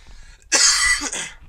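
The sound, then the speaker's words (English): A single loud cough bursts out sharply and breaks into a second shorter rasp before trailing off, heard on its own with no talking. “I don't know how to edit really well, so that cough is staying in.”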